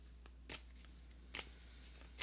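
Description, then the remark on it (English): A deck of cards being shuffled to draw a card for a chakra reading, with three quick riffling bursts spaced apart over steady low background hum; no talking. “Let's get a card. All this shuffling, huh?”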